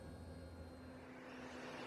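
A stealth helicopter hums steadily as it sets down in a clearing, its engine drone and low rotor rumble holding constant while a rushing wash of air swells slightly as it comes down.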